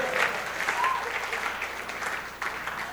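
An audience claps steadily, a dense, continuous patter of many hands at an even loudness throughout, with a faint murmur of voices mixed in.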